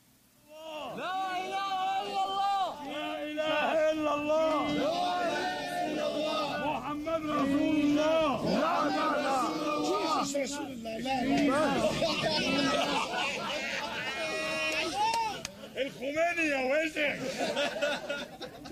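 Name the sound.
crowd chatter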